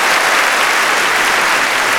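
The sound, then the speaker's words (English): Loud, steady crowd applause on a live concert music recording fills the whole stretch, a dense wash of many hands clapping at once with no individual claps standing out and no voices. “Crowd loves them, man.”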